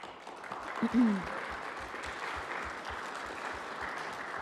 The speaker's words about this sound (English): We want to just greet you and offer you gratitude for being here with us today with a round of applause.